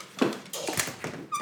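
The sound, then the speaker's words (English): A dog whimpers to go outside in a few short, squeaky whines, with brief pauses between the high-pitched bursts. “Damn, dog wants to go outside like every 5 minutes so he can go chase squirrels.”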